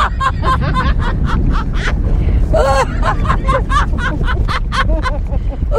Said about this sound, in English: is a grandma on a roller coaster. No need to explain anything there. Here she is. This is the clip.